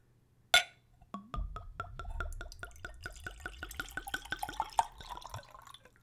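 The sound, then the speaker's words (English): A fairly low-proof spirit is poured from a screw-capped bottle into a clean Glencairn whiskey nosing glass: a brief clink, then a steady trickle of liquid with rapid glugging bubbles from the bottle neck, an ample pour, fairly quiet, with no talking. “And now for a pour.”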